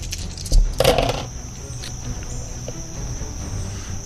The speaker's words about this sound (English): I'll take a chance and just roll my remaining dice.